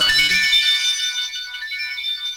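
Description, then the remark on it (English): A phone ringtone plays on its own, a bright, high-pitched electronic melody of steady, shimmering tones that holds at an even, fairly loud level throughout. “I gotta take this.”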